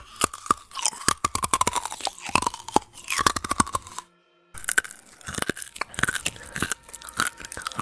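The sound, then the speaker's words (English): Loud crunching in rapid irregular bursts, like something brittle being bitten and chewed, with a brief pause midway before the crackling crunches resume. “Her next words to Sushant was interrupted by a crunching sound.”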